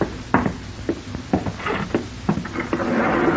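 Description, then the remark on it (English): A rifle bolt is worked outside a door to chamber a shell, producing a series of sharp mechanical clacks and clicks spread over a few seconds, with no voices; the rifle is carried by Sir Bennett Mountford. “It sounded like a bolt jamming a shell into the chamber of a rifle.”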